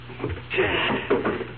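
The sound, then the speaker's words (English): A suitcase scrapes and bumps as it is dragged out from under a sink, a fairly loud shuffling rumble with a couple of knocks, lasting just over a second. “We're going to move the suitcases. Now, you get the one behind the refrigerator, and I'll get the one under the sink.”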